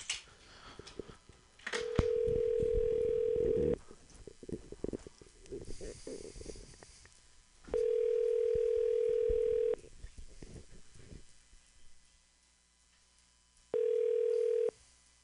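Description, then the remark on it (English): A telephone ringback tone on an outgoing call to Be Legally Green rings in long, steady bursts of about two seconds with pauses between, three rings in all, clear, with faint rustling and background noise between rings. “Hold on. Ringing.”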